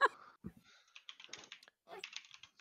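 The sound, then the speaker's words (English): Quick, uneven bursts of keystrokes clatter on a computer keyboard, moderately loud, with a brief pause before another flurry of clicks. “Freaky, I was having the same thought, it's almost like a sound effect keyboard.”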